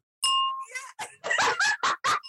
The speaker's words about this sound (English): Y'all hear that glass? That thing is real.